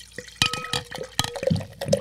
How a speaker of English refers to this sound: That was a pour. That was monster. That's a sign of what the hospitality at Valley is going to be like. I'm in. I'm so in. Monster pour with the pet nat.